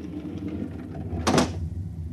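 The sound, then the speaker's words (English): A brief, bright sliding whoosh as a protective shield over a spaceport is slid aside, rising over a steady low hum and fading within a fraction of a second. No voices. “On the following morning, when Kreifer went to the conditioning room as prescribed by the buzzer, Reichert drew Aelin over to the spaceport and slid aside the protective shield.”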